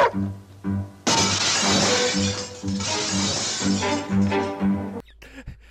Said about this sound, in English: They threw the dog through a window.